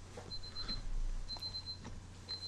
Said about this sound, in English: It's a bad alarm or a good alarm?